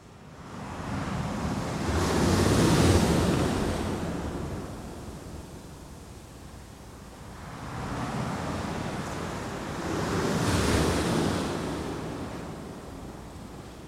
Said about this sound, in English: I had a question about page zero because I read that the first sound is the ocean.